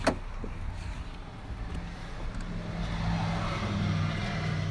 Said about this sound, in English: You can hear the cars buzzing around me.